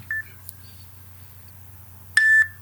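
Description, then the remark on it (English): Two electronic timer beeps over a low steady hum: a short, clear tone first, then after a pause a longer, louder beep with a slightly buzzy edge, from a timer that cuts off each answer after one minute. No one speaks. “And we have a little timer, and the timer goes beep, beep, beep, so it's going to cut you off after a minute, guaranteed.”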